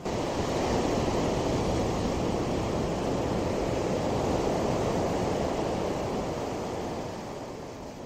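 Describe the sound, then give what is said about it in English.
A steady, loud roar of cold wind blowing outdoors just after rain, buffeting the microphone with dense low rumble for the whole stretch and easing slightly at the end, with no voices. “I'm going to end this video with these last few stories because it's cold and windy and it's going to rain again real quick.”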